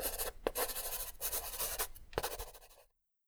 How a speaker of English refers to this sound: hunched over a piece of paper, scribbling away on it with a quill.